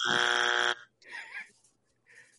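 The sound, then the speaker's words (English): A loud, harsh game show buzzer blares once for under a second, then cuts off abruptly as people start talking. “I didn't hear a buzzer for you, pal.”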